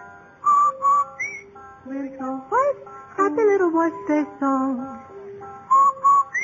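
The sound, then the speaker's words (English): A bright, clear whistled melody for a Rinso laundry soap advertisement plays alone, a short jingle of sustained and gliding notes at steady volume, loud with brief pauses between phrases. “No wonder Rinso users whistle while they wash.”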